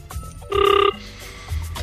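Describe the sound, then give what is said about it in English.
A telephone rings once on an outgoing call from radio station 947, a short warbling electronic tone lasting under half a second, set against a low, murky background rumble with no voices. “Uncle Rodney, please answer the phone.”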